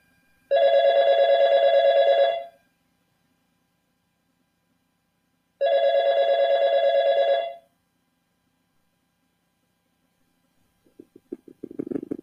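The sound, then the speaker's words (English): A telephone rings twice, each trill lasting about two seconds with a pause between, loud. A brief, muffled low sound follows near the end. “Miss Technical Person, do you mind turning back on that phone?”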